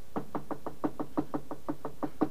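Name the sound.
knocking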